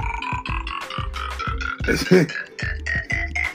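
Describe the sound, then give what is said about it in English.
A short, croaky burp from a burp sound-effect phone app rises in the middle, loud, over a steady rhythmic pulsing of tonal sounds that continues throughout. “Quick burp.”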